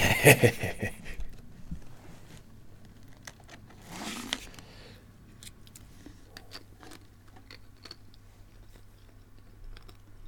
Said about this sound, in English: Also, apologies if I do go silent. I'm slyly munching on Pringles. Priorities, mate. Mm. What flavour? Sour cream and chive.